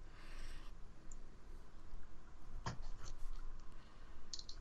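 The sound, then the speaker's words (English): A pen scratches across a piece of paper as someone writes something down, in quiet strokes, with a few sharper taps and scrapes over a low hum. No one speaks. “I am writing it down on this piece of paper right now.”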